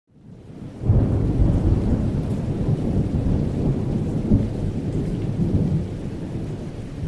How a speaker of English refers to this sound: Water that is condensed from the aqueous vapor in the atmosphere and falls to Earth in droplets? You've just heard the definition of rain.